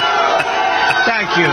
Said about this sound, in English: Thank you. That's not emotion. Those are boos.